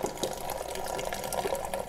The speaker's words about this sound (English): And so I'm just gonna add water to it. Okay, while that water is going